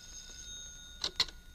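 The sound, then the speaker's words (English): Two quick bursts of a bright, metallic telephone bell ring out over a steady high electronic hum, with no voices in between. “The phone's ringing.”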